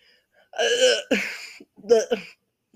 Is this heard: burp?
yes